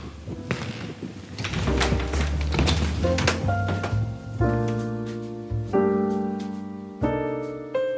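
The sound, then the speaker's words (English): A lock clicks and clunks as a deadbolt turns, then a door is pushed open with a soft thunk and rattle, followed by sustained ringing tones. “The sound of the deadbolt opening and then that sound of pushing the door open, those are sounds I've always known.”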